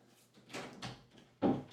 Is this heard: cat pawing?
yes